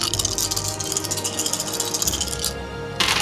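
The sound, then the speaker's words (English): A single die, rolled six times for damage in a game, rattles and clatters across a hard tabletop in quick, continuous tumbling bursts, fairly loud, with a brief lull before another roll starts. “I don't have that many dice, so I'm just going to roll this one 6 times.”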